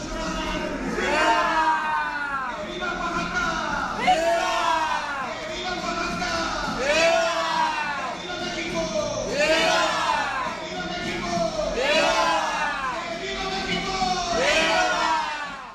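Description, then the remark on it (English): A large crowd at an El Grito celebration shouts and cheers in loud, repeated surges roughly every two to three seconds, voices swelling together in a rhythmic call-and-response chant answering a man shouting names of prominent revolutionary figures and 'Viva Mexico', with a steady roar beneath. “And so here's a kind of shaky recording of what El Grito is.”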